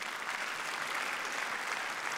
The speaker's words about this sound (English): You want to applaud about that? I think we should.